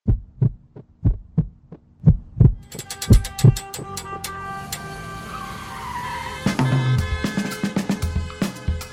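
A steady, low heartbeat, Mo's heart as she runs in the streets, thumps in paired beats, loud and alone at first, then a dense wash of ringing tones and noise, the wild beats around her, rises and swamps it as the pulse continues underneath.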